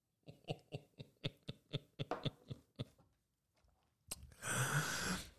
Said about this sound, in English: Sip of rum. Every time I lose my train of thought, it's going to be sloppy tonight.